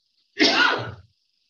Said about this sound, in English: Still not over my COVID kind of cough.